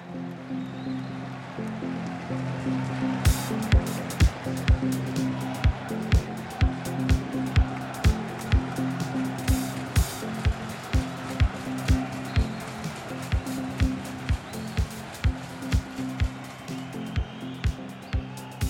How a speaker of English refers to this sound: The crowd audio. It's from... oh, no. It was from the Euro semifinal, Italy-Croatia, I think.